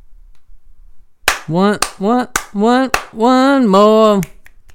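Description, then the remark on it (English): Crisp finger snaps, about 12 in all, land about every half second in a steady beat, loud, while a voice sings or hums a wavering tune between them. “You gave four claps. Four slaps, four ones, and about 12 snaps.”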